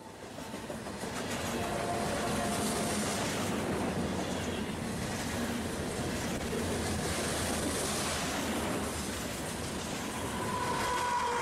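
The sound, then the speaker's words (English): A train rumbles along steadily, a loud continuous roar of wheels on rails with faint clacking, as it pulls into a station just before 9 p.m. at 50 degrees below zero. A thin whine rises near the end. “The train finally pulls into the station just before 9 p.m.”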